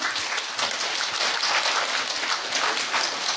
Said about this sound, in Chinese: 有人拍手了，有吗？